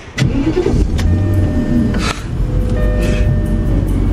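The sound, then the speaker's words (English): A car engine, started remotely by an OnStar operator, cranks and turns over, then settles into a steady, fairly loud idle with a low rumble and a few mechanical clicks along the way. “So that the OnStar person will start the car for them.”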